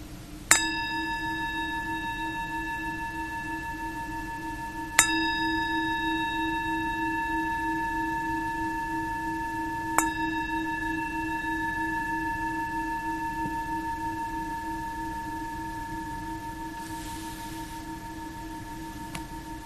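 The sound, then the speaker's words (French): A meditation bell is struck three times at steady intervals, each clear strike adding to a rich, sustained ringing tone that hums on and slowly fades, with no voices. “Je vous invite à vous laisser entendre le son de la cloche, vous laisser vivre cette expérience-là.”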